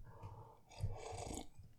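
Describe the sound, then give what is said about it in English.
A wet slurp of someone sipping a drink, followed by a brief swallow and breath, lasting about a second with no talking. “Let me take a sip here, and then we'll get into this week's topic.”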